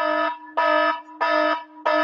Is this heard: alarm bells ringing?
yes